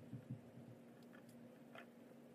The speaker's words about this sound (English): sips water.